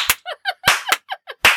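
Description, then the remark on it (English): Four sharp, loud hand claps land at uneven intervals, each a crisp burst, with short voiced sounds filling the gaps between them. “Oh, I just have to clap.”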